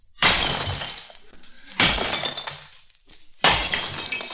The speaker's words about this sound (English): Well, that's something breaking, so it should be dishes.